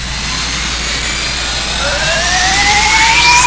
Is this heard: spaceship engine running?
yes